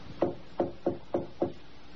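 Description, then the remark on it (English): Five soft, evenly spaced knocks on a wooden door in the dead of night, quiet, tapping out a steady rhythm with nothing else in the background. “with a soft tapping on Rachel Howell's door in the dead of night”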